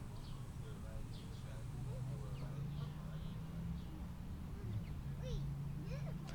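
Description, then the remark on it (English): Ducks squawk and quack at a person sitting beside them, in scattered bursts over a steady low outdoor rumble, with several calls overlapping. “an awkward sitting by the ducks, ripping bowls”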